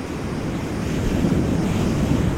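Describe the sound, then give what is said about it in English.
Ocean waves wash against the shore in a steady, rumbling roar, loud and continuous with a faint windy hiss throughout and no voices. “Picture ocean waves hitting the shore.”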